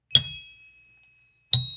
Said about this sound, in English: Is there a Snickers at the end of this or just a goddamn bell?